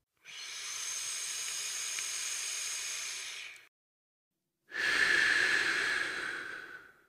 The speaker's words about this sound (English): grabs the pipe and lighter and takes a quick hit.